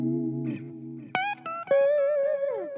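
Clean, bright electric guitar with hand-wound, low-output pickups by Russ, played through a Deluxe Reverb amp in an out-of-phase pickup position, giving a thin, pingy tone: a low sustained chord, then a few sharply plucked ringing notes and a sliding bend, with no talking.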